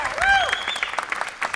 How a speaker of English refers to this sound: And once again, everybody, one more round of applause for Mr. Leonard Maltin.